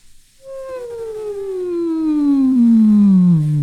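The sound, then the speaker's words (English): A lone voice does a siren exercise, one smooth, unbroken glide that slides steadily from a mid pitch down to a low one, swelling slightly louder as it descends over about three seconds. “So let's try the siren again.”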